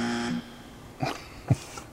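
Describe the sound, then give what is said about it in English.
A short, harsh game show buzzer blares for under half a second, then stops; two soft knocks or clicks follow in the quiet afterward. No one speaks. “Now, this one's going to be a little tough for me, so you may get to use the buzzer here.”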